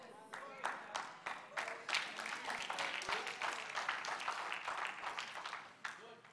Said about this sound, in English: I'm measuring that on my clapometer. I'm going to break this down for you in a moment. You're going to be clapping three times harder than you just clapped because I'm going to get into your space and show you the reality of what this is saying.